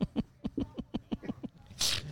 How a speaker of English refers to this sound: Did you just snort? I did.